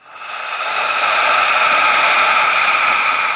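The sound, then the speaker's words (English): A forceful lion's breath exhale with the tongue out, following an inhale through the nose in a guided breathing exercise: a loud, raspy rush of air that swells in quickly and holds steady for about three seconds, with no talking over it. “Lion's breath out, your tongue out.”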